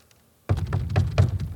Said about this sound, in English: If you're not struggling, picture him as scary as possible and put the worst vicious gun impossible in his hands. But how do you respond when this guy shows up at your door and knocks?